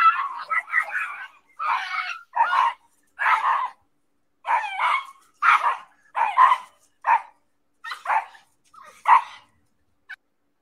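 Several dogs bark excitedly in quick, irregular bursts, with some sharp yips mixed in. The barking is loud, with brief pauses between volleys and no talking, as the dogs are out the front door of a house.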